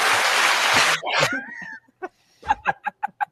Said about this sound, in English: The static clap. All right. Man. This just sounded pretty good, actually.